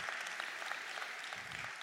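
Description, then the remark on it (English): A crowd claps for a point made during preaching, in a steady burst of applause, a dense, even patter of many hands that stays at a constant moderate level throughout. “Yeah, you can give a clap for that.”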